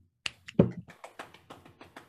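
A short burst of hand clapping in applause for kicker Matthew Wright: sharp claps, with one heavier, fuller clap at the start, then a steady run of lighter, quicker ones fading slightly toward the end. No voices.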